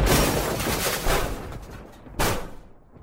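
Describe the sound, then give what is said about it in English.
A loud, raspy fart: a long rumbling blast that sputters on for a couple of seconds, then one more sharp burst before it trails off. No one talks over it. “I'm gonna catch a fart on this pod, because I got one coming.”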